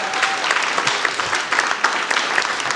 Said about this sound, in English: Everyone, please give a round of applause for